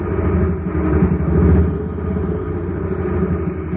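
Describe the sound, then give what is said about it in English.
A jet cycle's engine, filled with ordinary fuel at a filling station, gives a steady, low rumble without a break, a dull, throaty drone with a faint flutter and little high-end whine, holding at an even, moderate loudness throughout. “A jet cycle is just pulled into a filling station to get its tank filled. The man has it filled with ordinary fuel.”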